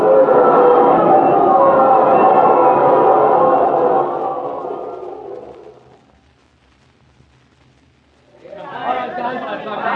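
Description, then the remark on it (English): A loud boxing crowd boos the winning boxer Joe Palooka in a dense, roaring wash of voices that fades out over several seconds, leaving a brief near-silence before the jeering crowd surges back. “Believe it or not, Joe Palooka's being booed.”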